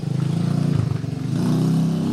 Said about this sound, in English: They're starting up their mopeds every 30 fucking seconds. Do you think they're fucking with us? It's not really about us, is it?